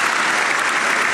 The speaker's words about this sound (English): I'm gonna give him just a little bit more applause.